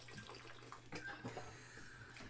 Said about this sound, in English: I'll let you finish that big slurp.